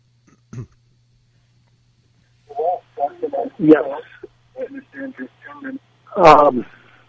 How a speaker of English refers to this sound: Can we please ask you to turn off your radio for a moment? Because we're getting a huge echo and we can't hear you.